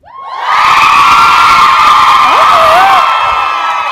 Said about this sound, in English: So on the count of three, I need you to scream and cheer and holler as loud as you can. Think about it for a second. One, two, three.